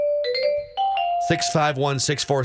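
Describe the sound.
The ESPN baseball chime: a short bright jingle of about three sustained, ringing notes that step upward in pitch, played on a radio sports show, followed immediately by a man talking.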